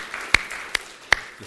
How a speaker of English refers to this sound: I'm so glad that you wanted to clap too, because I got so excited watching that.